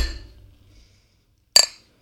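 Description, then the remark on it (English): Beer glasses clink together once in a toast, a bright, sharp ringing strike that fades quickly after a moment of quiet background noise. “Well, should we take a drink? Yeah. Well, cheers, guys.”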